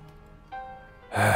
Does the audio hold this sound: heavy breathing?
yes